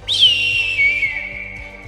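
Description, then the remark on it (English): A person whistles an imitation of an eagle cry: a single long, shrill, high-pitched call that starts with a sharp rise, then slowly glides downward and fades. No talking. “As you start doing that, you hear like an eagle cry.”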